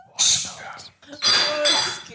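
A woman sneezes twice in quick succession, each a loud, sharp, breathy burst up close, the second longer and more drawn out than the first.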